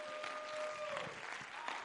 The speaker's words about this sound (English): Come on, let's clap our hands and give praise to the Lord.